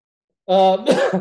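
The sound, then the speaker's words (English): A single fairly loud cough: a brief voiced, throaty onset breaks into a harsh, breathy burst, then trails off into a rough exhale after a moment of silence. “Hopefully my cough is getting better and you'll have to edit out less.”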